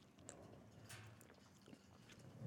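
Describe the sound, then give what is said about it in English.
Soft sips of a tequila drink with quiet mouth and swallowing noises, a few brief wet clicks scattered over a couple of seconds, with no one talking. “Okay, so sip.”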